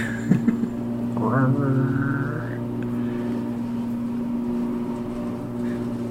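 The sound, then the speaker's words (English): A lawnmower engine drones steadily throughout with a constant low, buzzing hum, a brief clatter near the start and a short wavering higher tone riding over it. “And just pretend that that lawnmower is just breaking up all of those self-confidence issues.”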